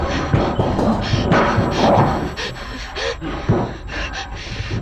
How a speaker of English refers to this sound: Slow your breathing